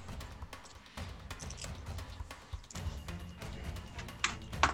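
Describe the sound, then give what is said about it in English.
Dice thrown during a tabletop game attack roll clatter across a living room floor in a quick, irregular run of sharp clicks and knocks over a low rumble, with a couple of louder hits at the very end. “Excuse me while I go and get my dice I threw the dice across threw the floor.”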